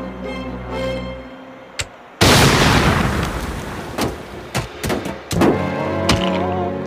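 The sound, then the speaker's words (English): A smoked turkey, blown up by a bomb squad, explodes with a sudden, loud blast that breaks a quieter humming stretch, followed by a long rumbling decay and several sharp thuds and cracks afterward. “So you get the noise there, but they blow up the turkey, which goes hundreds of feet into the plane”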